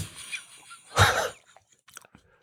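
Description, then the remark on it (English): Crunchy chewing of a chocolate-covered cricket: one loud, crackling crunch followed by a scatter of softer, brittle clicks as the chewing tapers off, with no talking. “There's some crunch to it.”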